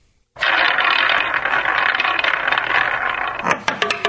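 A sports roulette wheel is spun: a dense, rapid mechanical clicking and rattling starts abruptly and runs steadily, like a spinning wheel ticking past pegs, then slows into distinct separate clicks near the end. Fairly loud, no voices.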